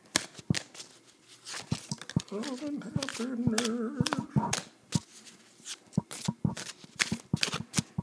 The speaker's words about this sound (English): All right. We've picked up the mic again, and now we're going to put the mic back down and shuffle the deck and ask Alistair Crowley Toth Tech, what did you think about that set?